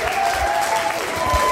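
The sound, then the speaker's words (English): Steady, loud audience applause welcoming a storyteller at a storytelling event, a dense wash of many hands clapping at once with no individual claps standing out, sustained throughout without a break. “Please start the applause.”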